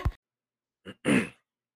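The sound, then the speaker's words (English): A loud throat clearing: a brief gruff burst, a short pause, then a longer raspy rumbling rasp lasting about a third of a second, with no talking. “I know that's poor podcast etiquette. Clearing my throat.”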